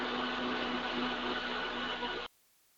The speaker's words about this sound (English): There goes that blender again.